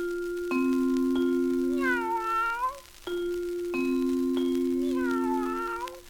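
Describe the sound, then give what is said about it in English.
Two identical drawn-out cat meows, a sound effect in a 1938 recording of the nursery rhyme Ding Dong Dell, each holding a steady tone before sliding into a wavering, bending cry. The pair repeats about three seconds apart, fairly loud, with no talking. “But one of the reasons is I really like the sound effects they include.”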